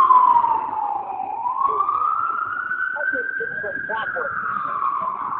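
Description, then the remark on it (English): A loud ambulance siren wails, its steady tone dipping and then rising slowly as it goes past, with faint indistinct voices underneath. “Oh, there's our ambulance.”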